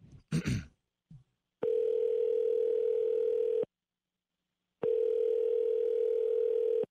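Ringback tone of an outgoing phone call: two long, steady, buzzing rings of about two seconds each, separated by a pause of silence, with a few brief clicks and rustles before the first ring. The call goes unanswered and is forwarded to an automatic voice message system.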